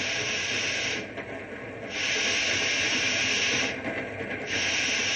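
A steam train hisses loudly and steadily as it is being stopped for a hot box on one of its middle cars, the rushing sound easing twice before surging back at full strength. No one speaks.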